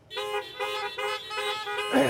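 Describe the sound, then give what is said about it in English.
Several car horns honk together in five quick, rhythmic blasts, loud, with no talking: an audience in a church parking lot worship service honking the response 'He is risen indeed'. “I'm going to say he is risen, and then you're going to honk out, he is risen indeed.”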